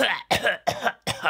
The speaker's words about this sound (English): She just coughed in my little baby face.